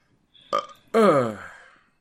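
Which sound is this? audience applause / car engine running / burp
burp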